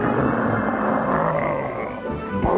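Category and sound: vehicle, planes flying overhead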